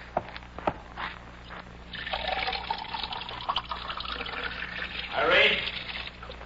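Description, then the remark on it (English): Water pours steadily into a glass for a few seconds, a bright trickling stream with a rising fill tone near the end, over a low background hum. “I'll get him a glass of water.”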